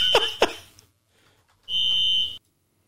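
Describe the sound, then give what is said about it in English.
A smoke alarm, set off by a real fire rather than a false alarm, shrieks with a sharp high-pitched tone: two brief chirps, then a quiet gap, then a loud sustained beep lasting under a second, heard alone. “a smoke or fire alarm's going off.”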